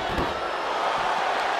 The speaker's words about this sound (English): But gets hit across the head once again by that stop sign.